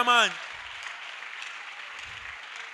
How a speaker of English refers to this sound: Give a mighty clap to the Lord.